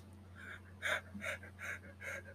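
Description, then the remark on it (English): A person yawns and pants in short, breathy bursts, about five quick huffs in a steady rhythm, imitating a dog, with a faint low hum underneath. “I was yawning and panting like a dog.”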